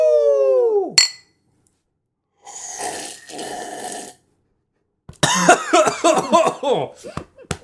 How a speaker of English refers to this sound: I slurped a little too much. Patting myself on the back. Oh my god. At least it was a good, delicious tasting cough. I coughed because I started laughing at you.